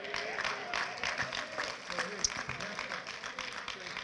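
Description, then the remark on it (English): Light, scattered clapping from a gathered audience, a steady patter of many hands, fairly soft overall, with faint voices murmuring underneath. “And now I knew you would do a little light clap on that.”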